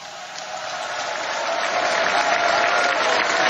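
A large crowd applauds and cheers after a speech, a dense wash of clapping that swells steadily louder over a few seconds, with no single voice standing out.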